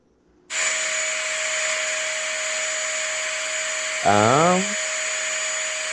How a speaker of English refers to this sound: Some sort of power tool. I'm gonna say drill, maybe. It's a vacuum.